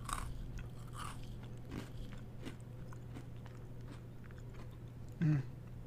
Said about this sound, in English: You should have put it close to the mic when you dunked it. I want to hear that squish. I'll go ahead and chew close to the mic. Here we go.